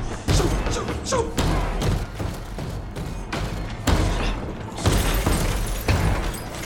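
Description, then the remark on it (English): Loud, heavy pounding on a door by human hands, someone trying to get in, a series of forceful thuds and bangs coming in irregular bursts, reverberant, continuing for several seconds. “Oh gosh, did you not hear me knock out here?”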